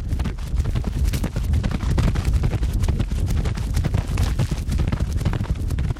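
Heavy hoofbeats of a thoroughbred horse thud in a steady galloping rhythm, dense and continuous with rumbling low-end impacts, as a trainer runs it in a circle on a rope, recorded with a wireless microphone on each of its four hooves. No voices present.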